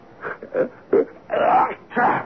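A person with a cold sneezes in Rome after a few short, breathy vocal catches, ending in two louder, drawn-out voiced bursts, with no words spoken.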